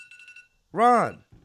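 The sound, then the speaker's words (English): A short burst of rapid electronic beeping, like an alarm going off, pulses for about half a second at moderate volume before a person's voice briefly cuts in. “I just had an alarm go off.”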